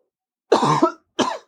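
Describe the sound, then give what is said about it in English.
A man with a marijuana cough coughs twice: a longer, rough hacking cough followed by a shorter one after a brief pause, with no talking. “Man, the marijuana cough is getting me today.”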